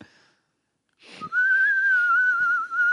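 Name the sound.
whistled bird call imitation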